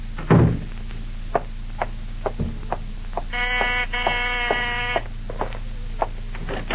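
A door creaks open to let a visitor in, with a drawn-out, bleating hinge squeal lasting over a second, preceded by a heavier thump and scattered clicks and taps of handling, with no talking.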